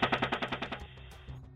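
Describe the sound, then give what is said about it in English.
A rapid burst of machine gun fire from an Apache helicopter, about eight evenly spaced heavy shots in under a second, followed by a rumbling echo that trails off. No voices. “They, too, were gunned down in a hailstorm of bullets from the Apache helicopter.”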